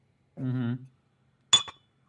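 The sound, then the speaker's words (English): A short hummed vocal sound, then a bright clink of small shot glasses of tea tapped together in a toast, a quick double knock with a brief ringing tone, followed by silence. “It's time for another shot. Of tea.”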